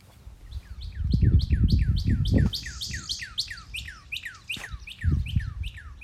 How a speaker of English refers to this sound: And it was really loud, and it just kept going and going and going. And I kept waiting to start the podcast until the bird stopped. And after about 10 minutes, I decided it wasn't going to stop, so I went in the house and did the podcast.